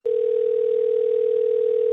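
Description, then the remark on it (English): A telephone line tone from an outgoing call: one steady, mid-pitched electronic hum that holds unbroken and fairly loud for about two seconds, with no voices. “We're calling him right now to set the love trap.”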